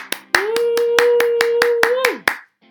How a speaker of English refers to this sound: Bravo, Chica. Round of applause for Jolene, please.